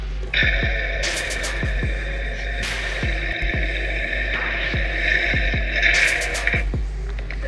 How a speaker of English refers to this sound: And if you want to know what they sound like, here's a Lamborghini rev.